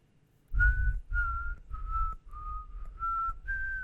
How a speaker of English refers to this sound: I don't know basketball. I thought they just whistled.